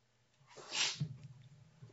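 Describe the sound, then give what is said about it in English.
A single sharp sneeze bursts out, a quick hissy blast that fades into a soft, low trailing sound, with no talking around it. “Bless you.”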